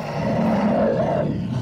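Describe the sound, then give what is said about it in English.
A deep, guttural creature roar from underneath something warm and soft that a foot has just pressed down on, loud, one sustained rumbling bellow lasting under two seconds with no speech over it. “And you put your foot down, and your foot presses down into something warm and soft, and you hear a guttural roar from underneath you.”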